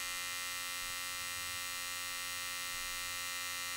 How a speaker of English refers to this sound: She could hear the low, stuttered buzz of his electric shaver.